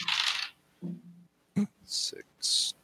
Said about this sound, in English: I rolled the same number of dice, and this time instead of 16, I got a 5. I got a 14.